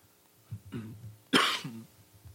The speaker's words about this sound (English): Excuse me. Getting over a cough.